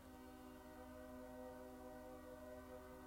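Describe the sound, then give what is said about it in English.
A train horn blares steadily for the whole stretch, a loud sustained chord-like tone over the low rumble of the passing train, with no one speaking. “I think I talked over it, but joining us, the train of our existence, ladies and gentlemen.”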